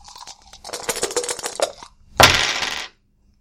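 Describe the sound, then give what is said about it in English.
Dice rolled for a technology roll clatter and rattle across a table for about two seconds with many quick clicks, followed by a louder, brief rush of rattling before everything goes silent. No one speaks. “So that sounds like a technology roll.”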